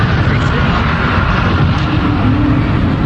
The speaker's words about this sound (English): Oh, let's hold on a second. Here's the 777 landing. Right. Look at that. Isn't that beautiful? Ah. That's a new 777. Look at that. Watch it.